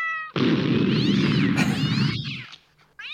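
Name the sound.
cats meowing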